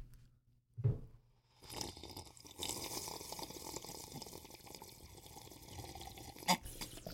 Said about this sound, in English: I just spilled a little water on my crotch. It's refreshing. That is the place to spill water.